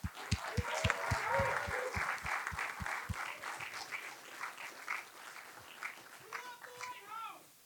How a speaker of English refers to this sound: can I get a massive round of applause for the Lighthouse for helping us out with this endeavor?